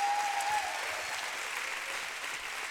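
A church audience at a revival service applauds steadily to thank God after people publicly gave their lives to God: a dense wash of many hands clapping at once that holds an even level throughout, with no voices standing out above it.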